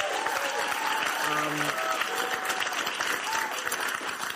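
An audience applauds steadily for several seconds at news that California lifts its restrictions, a dense, even wash of clapping with scattered cheers and a brief whistle-like tone rising out of the noise early on.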